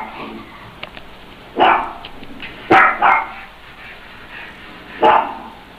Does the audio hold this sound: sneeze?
no